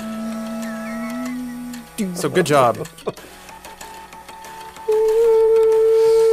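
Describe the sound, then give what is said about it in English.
Buzzy, mechanical electronic tones from the Floppatron, a stack of old floppy disk drives, play long sustained notes, first a low one, then a higher one. A man briefly speaks over the music in the middle. “Thanks for playing us out, Floppatron.”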